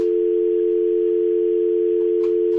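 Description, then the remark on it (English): A steady, loud telephone dial tone hums continuously without a break from a caller's phone that was not hung up, with faint background clicks near the end and no talking. “I guess Joe didn't hang up his phone.”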